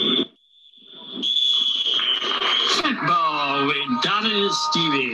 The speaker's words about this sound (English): So when there's a bit of atmosphere, so you've got the referee's whistle, you've got the crowd, you've got a horn. When you give it the layers of real life, it becomes a little bit more difficult.